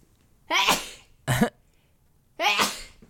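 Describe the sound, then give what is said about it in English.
Three sharp sneezes in a row, each a short explosive burst with brief pauses between them, and no talking in between. “Bless you.”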